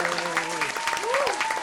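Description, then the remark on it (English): A short burst of dense, steady applause from a group, many hands clapping at once, with voices cheering and whooping over it. “That clap was mad walking.”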